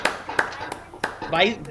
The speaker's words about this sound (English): Yeah. We applaud you.